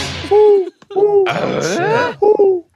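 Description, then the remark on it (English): A person imitates an owl with three loud, steady hoots, the middle one breaking into a wavering, breathy warble before a final short hoot. “I'm being an owl.”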